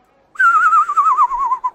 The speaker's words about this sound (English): But when you hear me whistle, it's time to get out of there. What kind of whistle?